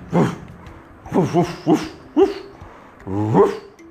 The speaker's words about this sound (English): Guess what it was? It was the sheepdog. The sheepdog was protecting the sheep. It did not want anyone to come close to its sheep. So the sheepdog was barking there.